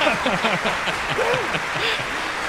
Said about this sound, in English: You know, I don't know if your audience is aware, there's applause, but there is a COVID pandemic going on.